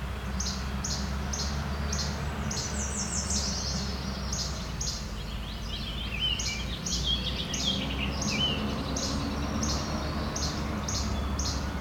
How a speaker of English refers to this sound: So these flycatchers really lighting up on here.